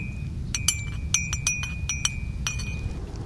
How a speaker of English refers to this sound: Here I have some dandelion roots that we grounded, and we roasted, and then we grounded. And I have it right here in my bag. Let me get the boiling water ready. Put it in my mug, and we can make some dandelion coffee.